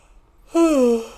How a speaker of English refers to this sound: And yawn. Sorry.